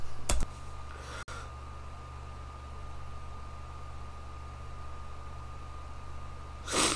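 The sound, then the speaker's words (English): A person clearing their sinus passages: a short, forceful nasal snort at the start and another near the end, with a quiet stretch of steady background hiss between them and no talking. “We literally just spent like 4 minutes of him clearing his sinus passages.”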